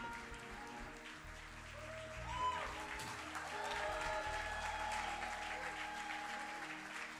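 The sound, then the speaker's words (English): An audience claps steadily as a long queue of people goes out of the hall, a dense, continuous patter of many hands that swells slightly midway, with a faint murmur of voices and tonal sounds underneath. “You can't stop clapping now.”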